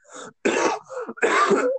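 A loud fit of coughing: a couple of harsh, raspy bursts with shorter throaty hacks between them, sounding partly like throat clearing, with no talking.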